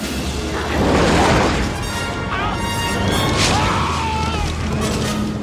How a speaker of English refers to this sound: When Indy takes over the truck in the truck chase, you can hear lions and tigers roaring every time he revs the engine.